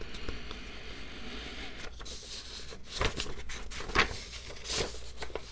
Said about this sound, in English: Am I shuffling the papers enough? To be fair, I should let you guys know that I have employed a paper shuffling team to make these noises because I just felt like I wasn't able to make the amount of paper noises that a podcast should have.